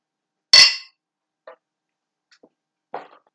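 A sharp metallic clink of beer cans tapped together in a toast, loud, followed by a few faint clicks and light handling knocks in otherwise quiet surroundings. One can is labeled "Try Not to Suck" and decorated with pictures of glasses.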